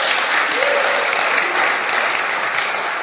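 A crowd applauds loudly and steadily, dense clapping filling the whole stretch with no pause and no voices standing out.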